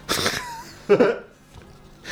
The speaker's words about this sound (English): I sniffed right into the microphone there. That was very attractive. I'm now going to sniff over here.